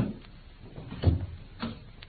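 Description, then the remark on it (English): A few muffled footsteps come in at an uneven pace as someone enters, soft thuds with one heavier step in the middle, with no one speaking. “I think I hear the fairy footsteps of your estimable partner.”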